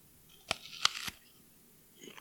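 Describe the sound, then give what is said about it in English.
A crisp, crunchy bite into an apple, close to the mic: three quick crackling snaps within about half a second, then near silence with a faint rustle. “And make sure you get it on mic so that way we can hear how it crunches.”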